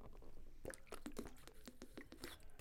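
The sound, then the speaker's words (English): Quiet sips of Fiji water from a bottle: a run of small wet mouth clicks and gulps in an irregular rhythm, with no talking. “Oh my God, I've been through this whole show and I haven't had a sip break.”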